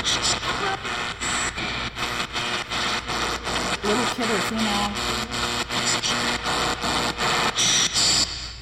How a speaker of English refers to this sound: I'm gonna try to clean this up a little bit. A lot of weird electronic interference.